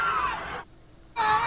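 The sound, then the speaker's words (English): Loud, panicked screaming from a crowd of protesters against the alt-right in Charlottesville as a car rams into them, breaking off into a brief near-silence before the shrill cries surge back just as strongly. “alt-righter from Ohio who takes his car and rams it into a bunch of the protesters against the alt-right in Charlottesville.”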